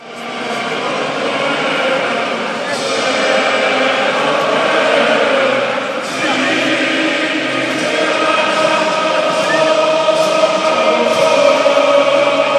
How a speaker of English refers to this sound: the sound of tens of thousands of Welsh voices singing their hearts out is spine-tingling